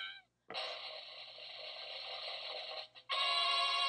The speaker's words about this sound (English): Can I grab that phone for a second?